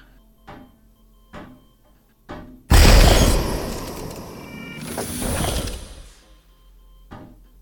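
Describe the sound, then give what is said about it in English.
A few soft thuds lead into a loud, heavy door grinding and rumbling open for about three seconds, swelling once more before fading, then a single faint click. No one speaks. “Well, while you're busy trying to play garden detective, I'm gonna open the other door.”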